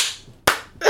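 A hand slaps a table with sharp, loud smacks, two crisp hits close together with a quick ringing tail, after the fading end of an earlier one. No voices.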